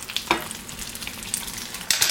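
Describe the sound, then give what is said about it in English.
Steady high-pitched crackling and hissing of an egg frying in hot oil as oil is drizzled over the top of the egg, with brief louder pops and spatters breaking through the continuous sizzle. “And another nice thing that happens as I drizzle the oil on top of the egg, it almost forms like these little craters in the white, which have really nice texture.”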